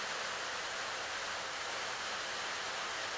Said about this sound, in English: The sounds that our mind processes from the rain causes our thoughts to shatter and scatter.